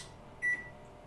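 One short, high electronic beep from an oven timer as it is being cleared, clear, over a faint room hum with no talking.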